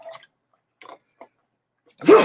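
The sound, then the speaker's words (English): A single sudden, loud sneeze bursts out at the end after a few soft, faint rustles and breaths, sharp, with a noisy blast of air. “Bless you, sir.”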